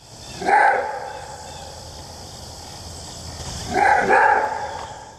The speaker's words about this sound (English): This is what the maned wolf sounds like. The sound is called a roar bark, but honestly, it just sounds like a big dog barking if you ask me. But it is a neat sound.